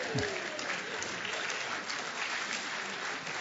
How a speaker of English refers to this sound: It's funny when you got to clap for a preacher who ends on time.